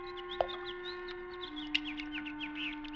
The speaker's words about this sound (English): What's that? Birds playing in the fish pond. Look at them. Happy birds.